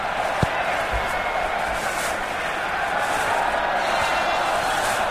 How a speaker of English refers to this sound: You got the telly on? No, I've not got the telly on. What? I can hear the sound of, like, a crowd in a football stadium.